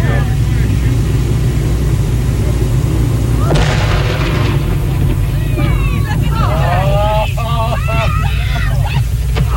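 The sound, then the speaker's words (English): A single loud explosion of some 20 cases, about half a ton, of dynamite set to blow up a long-dead beached Pacific gray whale booms out partway through over a steady low rumble, its blast rolling and fading while excited voices shout and cry out afterward. “Our camera stopped rolling immediately after the blast.”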